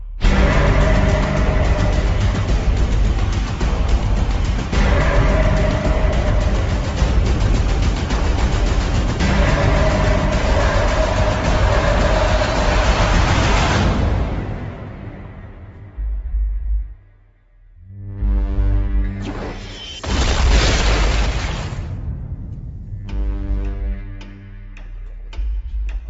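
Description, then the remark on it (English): A loud, ominous orchestral score with heavy metallic percussion hits pulsing at a steady rhythm, then briefly drops away before big brass swells return; no one speaks. “It's like lots of metallic percussive, you know, with some big, you know, brass instrument.”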